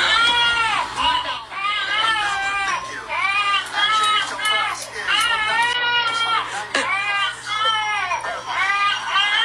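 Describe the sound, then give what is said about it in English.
A simulated baby doll, recorded at night, cries in loud, repeated wails after waking and fussing, each wail bending up and down in pitch, coming in a steady rhythm of sobbing bursts over a faint constant low hum. “It starts very subtle. It doesn't start off screaming right away, but it kind of wakes up and starts fussing, and then it launches into this.”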